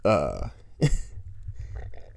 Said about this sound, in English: Jesus Christ, I'm like burping and shit. My bad, I had to stop recording for a second.